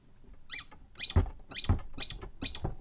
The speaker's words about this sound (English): But I've got it over here. I'm going to see if the nose still squeaks.